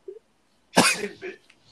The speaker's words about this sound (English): Pay up, we come out like thugs coughing on every part of your house, son.